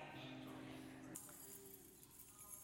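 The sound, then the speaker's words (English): A bunch of keys jangles with a bright, metallic shimmer, shaken steadily for a couple of seconds over a low background hum. “They hearing these keys.”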